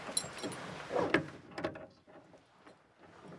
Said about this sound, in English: The Lama produces a key and unlocks the door to a place that has been hidden away for centuries.